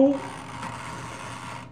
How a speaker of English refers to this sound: My toaster oven makes a lot of noise. That's why I try not to leave it on, because it's going to be clicking like the whole time.